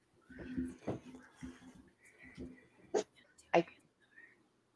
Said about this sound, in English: As soon as she started doing that, my dogs barked.